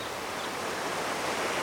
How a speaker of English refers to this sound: That stream has picked up a bit. That's no stream anymore. It's a river with rapids. It does look a bit wild.